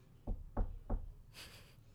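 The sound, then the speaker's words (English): Three evenly spaced knocks on wood, fairly loud with a dull low thud, followed by a soft rustling hiss. No one speaks. “I like that you knocked on wood.”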